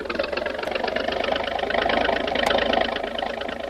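A motorboat engine is given full throttle to lift the bow of the boat, which is taking on water, and run it onto a beach on the mainland; its steady, rattling drone swells a little louder partway through before settling back, with no voices over it.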